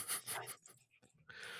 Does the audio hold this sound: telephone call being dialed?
no